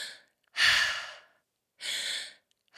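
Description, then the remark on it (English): Loud breaths through an open mouth, pulled in and pushed out in quick succession, demonstrating a breathing exercise: three forceful, airy rushes with short silent gaps between them and no talking. “So what you're going to do is you're going to be breathing in and out your mouth like this.”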